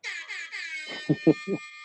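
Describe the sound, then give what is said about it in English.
A harsh, buzzy electronic buzzer, sounded to start a round of rapid-fire interview questions, blares in three quick pulses, then holds a steady loud tone as a few short vocal bursts break in underneath. “I got to sound the buzzer.”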